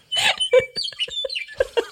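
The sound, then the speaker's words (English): A bird sitting in a tree in the Badlands sings loudly, a quick series of bright chirps and warbling whistles with short gaps between phrases, recorded on a phone. “recorded this bird that was sitting in the tree singing loudly.”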